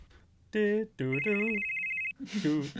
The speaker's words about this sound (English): Actually, you hear a ring. The ring of a phone that seems to be in your pocket that you do not remember putting in your pocket.